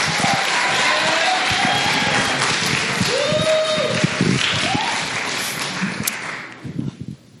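An audience bursts into sustained applause, a dense wash of many hands clapping with a few cheers and voices mixed in, holding steady before thinning out and fading near the end.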